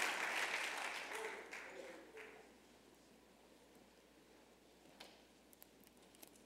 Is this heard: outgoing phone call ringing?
no